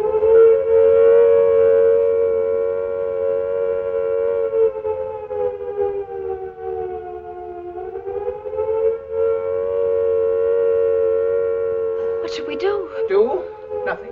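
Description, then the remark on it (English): An air raid siren wails steadily and loudly, its pitch sagging slightly midway before rising again, with brief bursts of voices breaking in near the end. “Air raids, indeed.”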